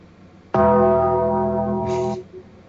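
A single loud bell strike rings out suddenly, its rich harmonic tone sustaining steadily for about a second and a half before cutting off, with a brief higher shimmer near the end.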